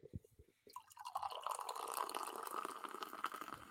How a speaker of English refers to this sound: Oh, yeah, that's a good pour right there. Look how foamy that is, though. Yeah, it gets really foamy. It gets super foamy.